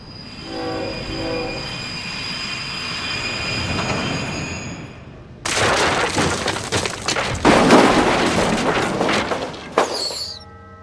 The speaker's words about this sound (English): This news story starts with a terrible train wreck.